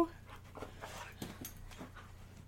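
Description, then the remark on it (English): A small dog of about 16 pounds pants in quick, breathy bursts by the microphone, trying to hit it with its tail, with a faint whimper mixed in, all fairly quiet over a low steady hum. “Why are you trying to hit the microphone with your tail? Because he's a dog.”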